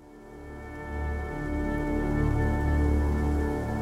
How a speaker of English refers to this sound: On November 5th, 1831, a cold wind sent a shiver through London. The pitter-patter of raindrops cascaded against the roof of King's College.